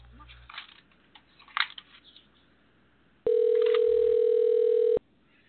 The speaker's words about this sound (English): And it's ringing. It's very exciting.